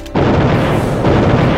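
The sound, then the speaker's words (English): Grenade explosions as grenades are thrown into a room past a barricaded interior door: a sudden, loud blast bursts in and rolls into a sustained, roaring rumble, swelling again with a second burst about a second later. No voices. “The interior door was barricaded and grenades thrown through into the room, but that barely slowed them down.”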